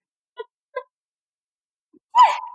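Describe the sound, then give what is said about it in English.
A sneeze: two short, voiced catching breaths, a pause of over a second, then one loud, sharp burst that trails off in a brief voiced tone. No talking. “I sneezed.”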